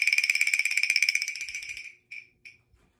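A chinchak percussion instrument, one of the sounds from the Broadway show Wicked, rings out with a rapid, shimmering metallic tremolo that slowly fades over two seconds, followed by two short, bright strikes and a faint final tap.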